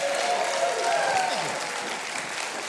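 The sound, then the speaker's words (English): A show's audience applauds steadily for the show's band, a dense wash of many hands clapping at an even loudness for a few seconds, with faint cheering tones riding underneath. “Hey, let's have a big round of applause for the best band in the land,”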